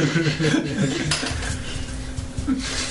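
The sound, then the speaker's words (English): Crunchy chewing like potato chips, voiced as Garruk eating a handful of beetles: a steady stream of crisp crackles and snaps over about three seconds, moderately loud, with no talking. “Chews. Potato chip sounds, yeah.”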